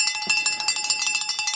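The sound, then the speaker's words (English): A cowbell clangs rapidly and steadily, about a dozen bright metallic strikes in quick succession, loud and alone with no voices. “I'm here for the bell”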